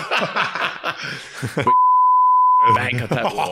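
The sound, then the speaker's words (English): Speech is abruptly cut by a loud, steady single-pitch censor bleep lasting about a second, then talking resumes right after it. “Yeah, we might beep that out”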